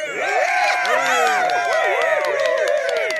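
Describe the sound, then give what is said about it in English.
An applause sound effect: a crowd cheers and whoops over scattered clapping, a steady loud wash of many overlapping voices that holds for about three seconds. “Hey, wait, we gotta have the applause.”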